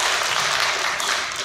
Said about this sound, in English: So first and foremost, First Thomasville Realty, thank you guys. Seriously, thank y'all. Can you stand up for me? You mind? Clap it up. There we go.